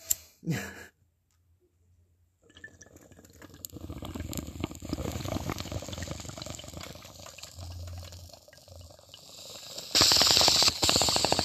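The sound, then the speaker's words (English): A water pipe bubbles steadily for several seconds as someone takes a toke, a continuous gurgling rattle that swells louder toward the end with a harsher hiss as air rushes through, after a short click and a brief pause. “We gotta take the second toke of the podcast.”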